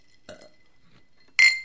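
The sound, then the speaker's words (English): A single bright, ringing clink of glasses in a toast near the end, loud, its tone lingering briefly. A short, low, rough sound comes earlier, with quiet stretches in between. “Ooh, that gets a good clink.”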